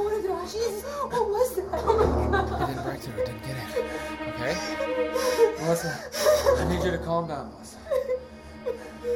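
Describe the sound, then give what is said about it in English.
A woman's panicked breathing: rapid, ragged gasps mixed with strained whimpering sounds, continuing unevenly throughout with short sharp intakes of air. “Slow down your breathing.”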